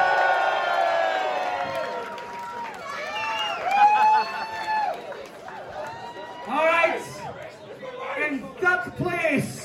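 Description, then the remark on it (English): An audience cheers and whoops loudly for three placed contestants, with many voices shouting and rising together in continuous bursts of excitement that swell and fade over several seconds. “We're going to applause for all three. God, he's an extra big cheer.”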